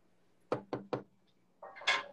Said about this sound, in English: I'm gonna knock on all the wood.